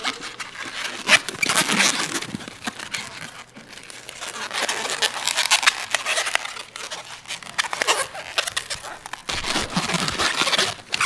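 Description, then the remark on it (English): An old rubber balloon being twisted and squeezed into a Snoopy balloon animal, a steady run of squeaky, crinkly rubbing and creaking that swells and eases in bursts, with no voices. “Do you want to mic the sound of this? It's funny, like, I don't buy these balloons very often.”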